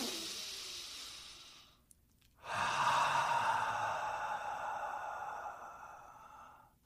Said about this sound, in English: In through the nose and out through the mouth. I think about 2 to 3 minutes of nice, deep breathing, where you're just focusing on your breath. Focus on the sound of your breath.